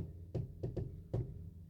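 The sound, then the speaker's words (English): Four muffled knocks on a door in the playful 'shave and a haircut' rhythm: one, a pause, two quick raps, then a final knock. Quiet, with no one speaking. “I don't know if you heard that, but I did the shave and the haircut knock.”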